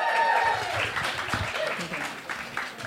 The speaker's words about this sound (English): I feel like this lady on this side put her hand up first. Yes, you. Come on, give her a round of applause.